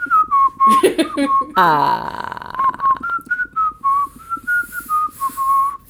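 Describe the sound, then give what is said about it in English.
Someone whistles a wandering tune, with clear melodic notes rising and falling throughout. A brief rough vocal noise interrupts early on before the whistling carries on. “Why is I'm no one going? Whistling right now?”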